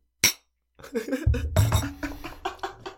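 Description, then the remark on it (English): A single bright, sharp clink of glasses touching in a cheers toast, followed by a moment of quiet and then muffled voices, a low thump and soft clattering. “We forgot to cheers that one.”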